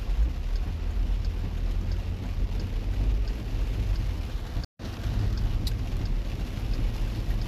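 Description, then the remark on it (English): A car plows through deep standing water on a highway, just past a sign reading Chattanooga 30 miles, Atlanta 135 miles: a steady rushing, splashing roar over a heavy low engine rumble that holds constant throughout, broken only by a brief dropout to silence partway through. “There's a big, deep thing of water that I'm going through.”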